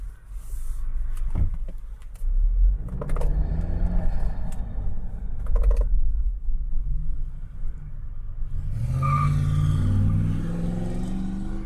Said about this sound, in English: So, traffic.